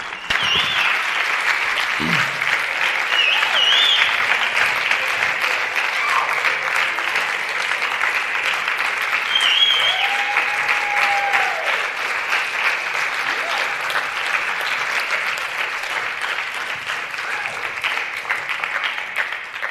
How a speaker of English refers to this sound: Would y'all give a big round of applause for my good friends? I'm not going to name them all, but come on up, women and members.